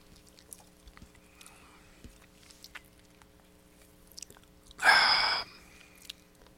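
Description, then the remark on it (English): A single short, loud slurping sip of Colt 45 Double Malt malt liquor, lasting about half a second, set against a quiet background with faint hum and a few small mouth clicks. “So I'm gonna take a sip, guys.”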